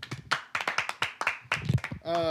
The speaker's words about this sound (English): Welcome back, everybody. Hey. Hey. Another round of applause, everybody.